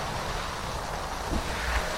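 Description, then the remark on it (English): Steady, rushing wind noise fills the whole stretch, a broad continuous roar with low rumbling gusts underneath and no voices. “There we go. We got some wind.”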